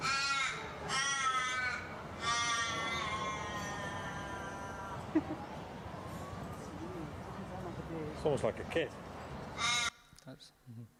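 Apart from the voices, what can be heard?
raven calls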